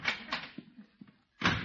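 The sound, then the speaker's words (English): The back door of a house opens with a short creak and bump as a visitor arrives, then a few soft knocks and shuffles follow before another rattling burst as it swings or shuts, moderately loud. “Mr. Cooley's at the back door, Bertie. Come in, Mr. Cooley.”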